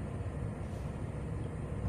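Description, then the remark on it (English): A steady, heavy low rumble of trucks idling and rolling into a truck stop, continuous and fairly loud throughout, with no one talking. “And for the background noise of all the trucks pulling in.”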